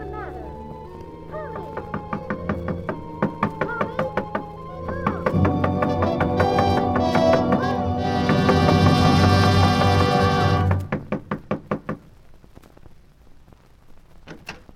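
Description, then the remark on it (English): Repeated sharp knocks on a wooden door, sounding through a dense wash of music and voices, then a quick series of distinct raps standing out as the background drops away near the end; someone knocking at a person's door to wake them. “I've been knocking at your door the longest time.”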